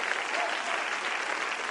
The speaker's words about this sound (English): And somebody clap your hands one more time.